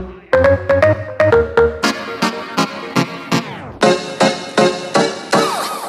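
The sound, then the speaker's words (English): Synthesizer notes, played in a sound system check, pulse in a steady rhythm, first as a stepping melody, then sliding downward in a sweeping glide before bright, buzzy chords hammer out repeated loud stabs. No voices are heard. “Synths.”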